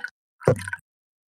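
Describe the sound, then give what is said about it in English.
A single short splash of water, a quick wet plop lasting under half a second, preceded by a faint brief tick and followed by silence. “It's like every other splash.”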